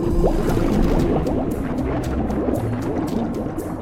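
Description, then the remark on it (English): Loud, steady rush of water with churning, bubbling turbulence and low rumble as an outer sea door is opened, continuous throughout with faint splashing bursts higher up; no voices. “Opening outer sea door.”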